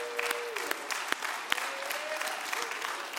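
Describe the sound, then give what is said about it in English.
A church audience claps steadily, giving a round of applause to Mr. Pete Link, who held the back-to-school bash; the dense, even patter of applause at moderate loudness with a few sharper individual claps standing out. “Everyone give him a round of applause.”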